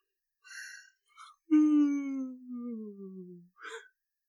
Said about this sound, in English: I'm yawning again. Oh, no. Here's the yawn.